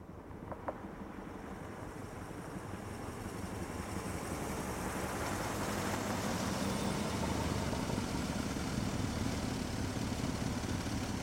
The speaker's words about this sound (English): Now let's hear the car come back.